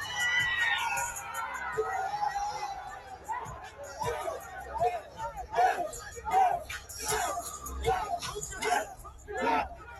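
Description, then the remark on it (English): A noisy crowd of kids at a concert chatters and yells at once, rising into bursts of loud, reverberant shouting, with no single voice standing out. “I don't know what they're yelling.”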